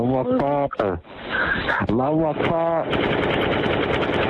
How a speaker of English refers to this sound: Those gunshots were not real, but deputies needed to make sure the mosque wasn't being attacked.